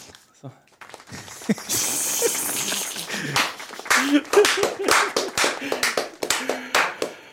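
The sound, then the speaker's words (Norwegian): A crowd claps steadily with sharp, dense hand claps as a speaker walks onto the stage, rising in intensity over several seconds, with some cheering or murmuring voices mixed underneath. “Du, klapper han på scenen, eller?”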